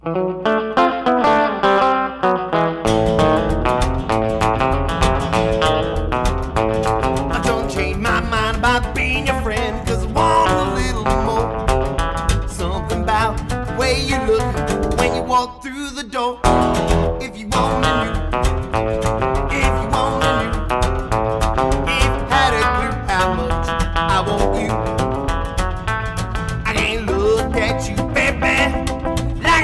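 A recorded song plays at steady full loudness with dense, layered instruments and a driving rhythm, the guitar tone processed with distortion and effects; a brief dropout breaks it midway before the music resumes.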